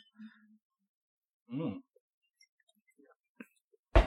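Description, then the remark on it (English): Glass bottles of alcoholic root beer clink together once in a toast, a sharp tap near the end, preceded by a soft breathy sigh and a faint click amid otherwise quiet surroundings. “So we're also drinking a little bit of root beer. Cheers, guys. Cheers.”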